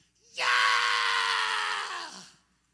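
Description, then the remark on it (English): A voice imitates a woman at the front of a church screaming with everything she had, one piercing cry held for about two seconds before trailing off, shrill with no other sounds around it. “He said, I don't know what got into the woman, but she screamed with everything she had.”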